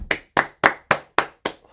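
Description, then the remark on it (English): A single person claps hands at a steady, even pace, seven sharp bright claps with brief silences between them, no voices present. “Ending back there where the clapping was, where I said stop, end there.”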